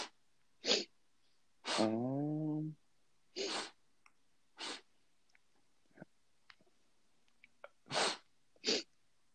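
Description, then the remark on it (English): A voice imitates sniffing with a series of short, sharp, breathy bursts spaced irregularly, one running into a brief buzzing voiced tone, with faint clicks in the gaps. “How do you think if you were to spell out a sniff, how do you think you would do it?”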